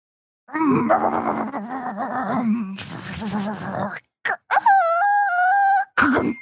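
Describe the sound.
A person, playing a role-playing game, vocally imitates a truck backing into an alley as a sound effect: a long, low, growling engine rumble, then a couple of quick bursts and a steady, high, nasal tone mimicking a reverse beeper.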